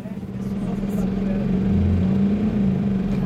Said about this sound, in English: We're now in the bus